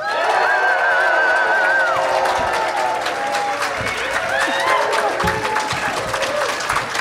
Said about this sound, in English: Unprompted applause. It was amazing. It's like they knew what to do, and nobody told them. So organic. I love it.